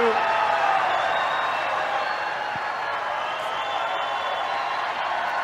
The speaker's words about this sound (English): I cut off the cheering. The cheering goes on for some time.